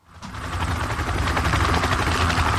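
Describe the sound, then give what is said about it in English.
A helicopter's rotor thuds steadily and loudly, a fast rhythmic chopping over a dense engine roar that swells in and then holds for a few seconds, with no voices. “Helicopter pack.”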